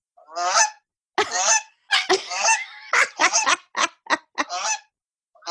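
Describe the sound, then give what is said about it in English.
A goose honks repeatedly in loud bursts, a harsh run of calls that grows quicker and choppier toward the end, with short silent gaps between them and no talking. “So it's more of a the goose. I'm looking at goose videos now.”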